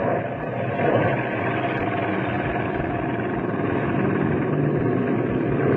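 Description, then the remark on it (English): An airplane engine drones steadily overhead, a continuous, even rumble that holds at the same loudness throughout with no voices or other sounds breaking in. “Let's move into position while they're watching the plane.”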